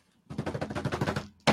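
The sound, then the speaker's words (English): A drumroll of quick, steady snare hits lasting about a second, then a short pause and a loud bright crash to finish it off. “while … … has reportedly slept with drumroll please.”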